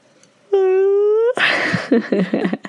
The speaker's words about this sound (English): So we're just gonna title this episode "The Yawning." Because it's a horror show of yawns.